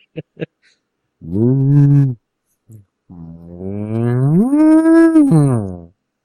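A cow moos twice, loud: a short low moo, then a longer drawn-out one that rises in pitch and falls away, with a few faint clicks just before.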